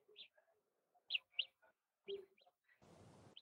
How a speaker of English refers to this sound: I would just make this bird sound that gets louder and louder until you hold it and just turns off. It's great.